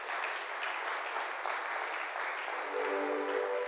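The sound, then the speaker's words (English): A crowd claps steadily, a dense wash of many hands at an even level throughout, with a short held tone rising in near the end. “Clap your hands if you hear what I say.”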